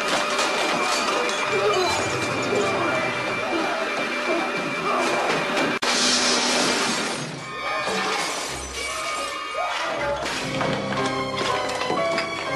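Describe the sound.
A film scene of Nicolas Cage smashing things: loud, continuous smashing and shattering, with glass breaking and debris clattering in dense bursts, punctuated by a sharp crash around the middle and muffled voices mixed in.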